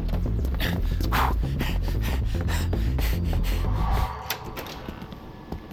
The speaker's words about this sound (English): No way. What? The air conditioning. It works.